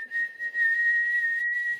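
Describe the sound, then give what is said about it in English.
A whistle is blown to summon a moving house, in one long, steady, high-pitched note that holds for nearly two seconds, clear and fairly loud, with no talking. “Yeah, so once you're outside Heaven's Hell, I assume just you blow the whistle that the house gave Lucky.”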